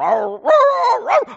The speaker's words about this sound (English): And one thing I learned about Tijuana, Mexico, there's about 2.5 million people there, but there are about 8.5 million dogs in Tijuana. So all night, all you could hear were dogs doing dog things.